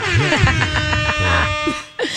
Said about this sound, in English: Do you ever just, when you don't have your air horn with you, just do it in conversation? No, like, I have it on my phone.